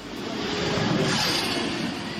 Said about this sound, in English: That clip from the Goodwood Festival of Speed's YouTube channel is the sound of the McMurty Spearling car whizzing around the course, beating the record set in 1999.